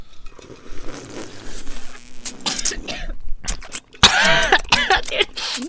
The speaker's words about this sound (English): Dude, came out my nose. That was a double cough situation. Wow, the first one wasn't me. It was me, but not from me right now.